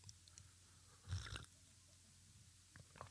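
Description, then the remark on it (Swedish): A short, wet slurp of carrot juice from a glass, a single burst lasting about a third of a second, with faint mouth and swallowing noises around it. “Det, jag kan säga, det ena är ju kaffe i mugg och det andra är morotsjuice i glas.”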